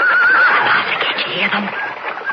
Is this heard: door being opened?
no